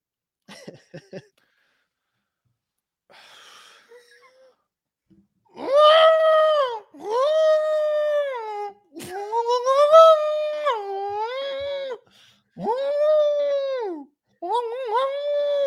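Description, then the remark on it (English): A person imitates elephant trumpeting with their voice for a 15-second challenge: a few short breathy sounds, then about six loud, drawn-out, wavering blasts that bend up and down in pitch, one after another. “An elephant noises for 15 seconds.”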